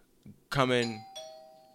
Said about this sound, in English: Bell rings.